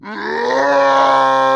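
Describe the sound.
A man imitates Grey Worm's battle yell from when Dany goes off her meds, a yell compared to Rambo First Blood Part 2: one loud, sustained, rising cry with a rough, strained edge, held steady for over a second with no other sounds.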